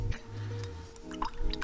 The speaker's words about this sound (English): She splashed water on her face